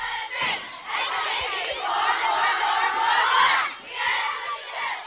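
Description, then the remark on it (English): A group of girls at summer camp cheers and shouts together during Color Days team games in loud, sustained bursts, their voices high and energetic, rising and swelling over about five seconds with a brief dip between outbursts. “They like the cheering.”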